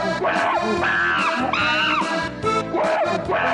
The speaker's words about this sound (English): It's a real monkey, I swear to God. Listen, you can tell it's a real monkey. You can hear it.